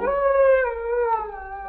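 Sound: wolf howling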